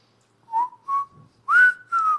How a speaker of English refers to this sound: Do you know what that whistle was? Were you trying to do Mayberry?